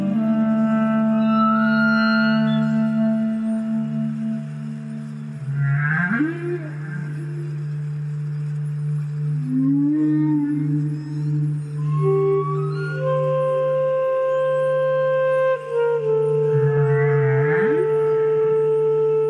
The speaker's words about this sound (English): those were humpback whales you heard along with the regular instruments.